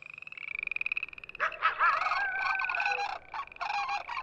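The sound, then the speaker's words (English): At a zoo at night, a rapid pulsing trill gives way to harsh, warbling calls of parrots and parakeets flying overhead. The calls overlap and sweep up and down, fairly loud and continuous, with no voices. “Those are the birds flying overhead. A parrot. A parakeet.”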